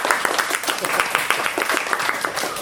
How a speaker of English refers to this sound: Can we give a round of applause